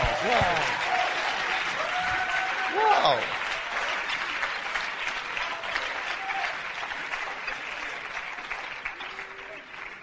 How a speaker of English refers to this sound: And people are clapping for the speakers.